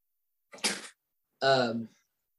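A single cough: a harsh, breathy burst followed about a second later by a longer, voiced, throaty exhalation. It is fairly loud and stands alone with no talking around it.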